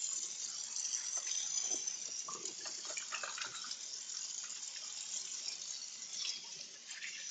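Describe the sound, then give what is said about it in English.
Steady hiss of running tap water pours for several seconds, with small irregular splashes and sloshes as hands are washed with soap under the stream; no one speaks. “Make sure you use soap and water.”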